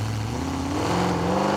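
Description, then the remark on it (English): A truck engine revs hard as the driver pegs the tachometer and dumps the clutch, the tires breaking traction and spinning, its deep steady roar climbing in pitch over a second and a half, loud and continuous with no voices. “He pegged out the tachometer and dumped the clutch.”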